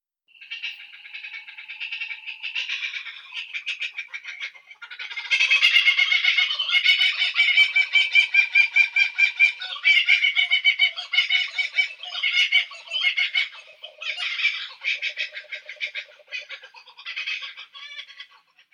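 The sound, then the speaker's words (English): A laughing kookaburra's raucous call rolls on for nearly twenty seconds, rapid chuckling bursts that swell into a loud, frantic cackling chorus before tapering off, with no talking. “That's the Gotham bird, aka the Laughing Kookaburra.”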